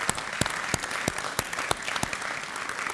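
An audience applauds steadily, a dense wash of clapping with a few sharper individual claps popping out at a fairly regular beat. No one speaks over it.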